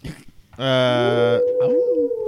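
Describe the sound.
A person lets out a loud, drawn-out dog-like howl, a single sustained tone whose pitch slides upward and wavers, preceded by a short breathy vocal sound.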